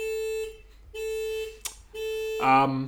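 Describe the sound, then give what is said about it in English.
A car alarm sounds in loud, steady electronic tones, three sustained beeps separated by short gaps, then shifts to a harsher, warbling pattern at the end. “We'll just pause there for a car alarm break.”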